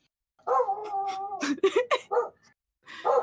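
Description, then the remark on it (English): A female dog lets out a drawn-out whining yowl, then a quick burst of several sharp, loud barks, and after a short pause one more bark. “I'm just used to barking all the time.”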